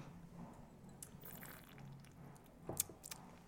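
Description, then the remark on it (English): A tongue dips into a drink, making a few faint wet smacks and small liquid slurps, with quiet clicks near the end and no talking. “For everyone listening, I'm just sticking my tongue in this.”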